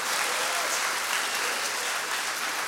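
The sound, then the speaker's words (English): A church audience claps for Jesus together in sustained, dense applause for nearly three seconds, steady and loud throughout, with a few faint cheers mixed into the crowd noise. “Come on, give it a clap.”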